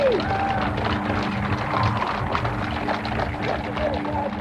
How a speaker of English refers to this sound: You can hear her husband ask if she has a handkerchief, and she draws one from her pocket and she dabs her eyes while the cheers continue.